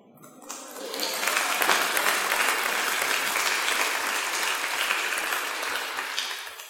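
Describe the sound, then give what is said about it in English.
A crowd claps in a steady, lukewarm patter that rises quickly and holds at an even, moderate level for several seconds, with no cheering or voices standing out. “Notice how tepid that clapping was, huh?”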